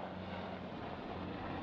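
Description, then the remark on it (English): A military helicopter drones steadily overhead, a continuous low engine roar with a rumbling, throbbing undertone that stays at the same loudness throughout, with no voices. “Helicopters. Military helicopters.”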